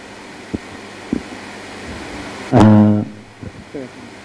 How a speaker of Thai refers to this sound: เปิดแอร์หน่อยไหมจะได้ไม่ร้อนเริ่มร้อนแล้ว